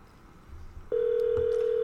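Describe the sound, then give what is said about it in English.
A steady electronic telephone ringback tone starts abruptly partway through and holds loud and unbroken to the end as an outgoing phone call rings before being answered. No one speaks. “He's going to answer the phone with a short joke.”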